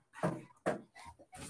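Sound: dog barking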